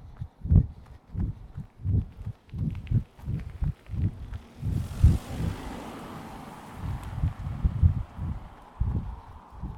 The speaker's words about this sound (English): There we go, it's a car.